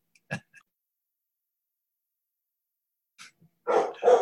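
Australian Shepherd dogs bark in short bursts: one sharp bark, a long pause, then a quick run of three louder, harsh barks close together. No talking.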